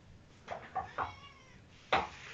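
A female cat meows insistently as she comes in hunting down a person, about four short, strained cries in quick succession with a brief pause before the last, loud, with no one talking over them.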